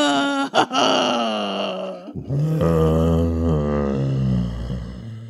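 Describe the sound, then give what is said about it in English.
A voice imitates a zombie with long, drawn-out groaning moans, loud and wavering in pitch, one sustained moan breaking briefly before a deeper, rising second moan continues to the end. “And let's hear everybody's zombie moan.”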